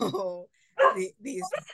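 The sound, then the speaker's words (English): Dogs bark in a few short, tonal bursts separated by brief pauses, fairly loud, with some whiny, voice-like yelps mixed in. “these dogs right now.”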